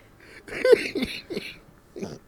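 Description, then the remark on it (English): A short run of harsh coughs, about three or four rough bursts spread over a couple of seconds, with no talking around them. “Like, you made me cough.”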